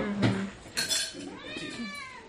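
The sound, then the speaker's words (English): A male cat that wants to go outside lets out a drawn-out, rising and falling meow with clear harmonic tones, preceded by a couple of brief clinking kitchen clatters like dishes or cutlery. “Oh, he's got to yell at you about things. He wants to go outside.”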